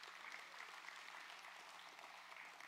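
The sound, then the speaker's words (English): A church audience claps for the worship leaders during a morning service in a dense, continuous wash of applause, sustained at an even level throughout without any talking over it. “Let's give them a round of applause this morning.”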